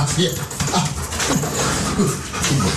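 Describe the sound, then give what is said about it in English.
A dog whimpers in short, wavering whines over several seconds, mixed with breathy panting and steady background noise, moderately loud. “is a pet lover who owns two dogs, a Caucasian Shepherd and a Sprint.”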